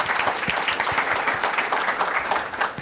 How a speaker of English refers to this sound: Quick round of applause for our second set of panelists, who you'll see in a couple moments.